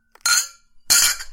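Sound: glasses clinking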